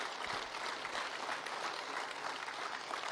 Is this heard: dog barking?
no